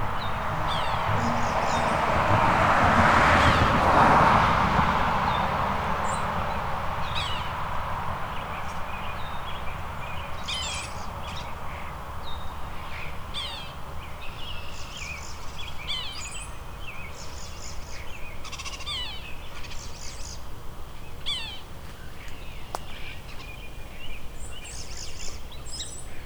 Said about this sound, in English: The sapsucker doing its kia again. There we go. Right when the cars go by.